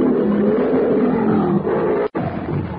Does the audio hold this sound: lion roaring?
yes